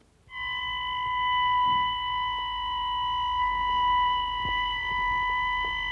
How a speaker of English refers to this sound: It's 5 o'clock in the morning, and the alarm has just gone, and we're now going down to the ambulance to get in, and I don't know what the call is yet until we get downstairs.